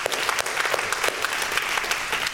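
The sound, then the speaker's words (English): A crowd applauds steadily, many hands clapping in a dense, sustained patter at an even, moderate loudness. “Yeah, it's worth applauding for.”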